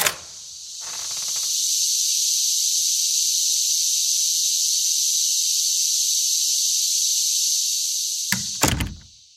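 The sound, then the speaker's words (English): A dense, unbroken chorus of Brood X periodical cicadas drones outdoors right outside an office door on the U.S. East Coast as a loud, steady high-pitched buzz for several seconds, ending with a couple of heavy door-like thunks. “For more on that, we go to the cicadas right outside our office door.”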